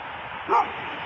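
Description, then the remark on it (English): A single short dog bark rings out against a steady, noisy background hum, standing out briefly and clearly before the constant din continues. “Hey, doggy.”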